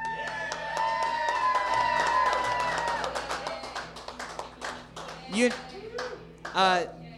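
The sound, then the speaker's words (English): One person claps in a quick, steady run of sharp hand claps over a fading musical tone, with rising vocal whoops breaking in near the end. “You know the podcast host is a loser when they clap at their own shit, baby.”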